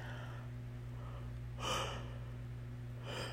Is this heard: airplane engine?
no